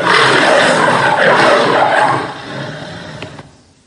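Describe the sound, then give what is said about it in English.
A loud, rough lion roar fills the first two seconds, broad and throaty, then fades away in a trailing rumble. No one speaks. “Remember the lion and its roar that James introduced us to at the beginning of this series?”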